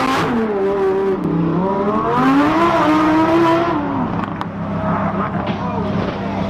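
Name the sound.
sports car engine revving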